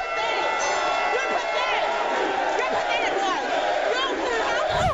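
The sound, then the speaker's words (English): A studio audience cheers loudly and steadily throughout as a man turns to the crowd and raises a cup, with scattered whoops and shouts rising above the dense roar of many voices. “He then turns to the crowd and raises the cup like it's the Holy Grail, garnering cheers typically reserved for a last-second touchdown”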